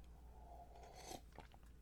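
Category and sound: food or drink, sipping coffee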